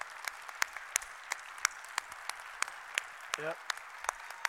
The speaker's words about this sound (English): We would love to give you a round of applause and thanks.